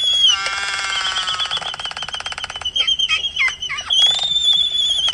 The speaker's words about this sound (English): Is it the high-pitched balloon air coming out of the balloon sound? It's all of it. This is all a pair of albatross doing their mating dance.